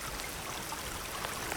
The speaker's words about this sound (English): This creek. The woods right beyond there.